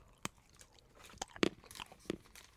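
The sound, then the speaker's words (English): Someone chomps through a £5 chocolate bar, with a handful of sharp, crisp crunches at irregular intervals and softer chewing between them. No one speaks. “I can taste it as you chomp through it.”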